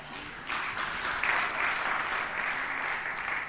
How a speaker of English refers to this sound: a round of applause.